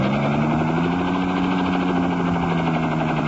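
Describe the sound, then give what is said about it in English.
A helicopter roars steadily, its engine drone and rotor pulse filling the air with a dense, continuous hum whose pitch slides gradually lower as it zooms swiftly downward. “Suddenly, the helicopter zooms downward swiftly.”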